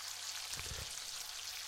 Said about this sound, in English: You're just taking this dough, shaping it vaguely like a funnel, frying the crap out of it, and then dipping it in a bunch of powdered sugar.